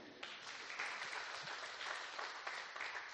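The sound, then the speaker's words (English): A church audience applauds steadily for their pastor as he takes his seat, a dense wash of many hands clapping at even loudness for a few seconds, with no one speaking over it. “Let's applause our pastor as he takes his seat.”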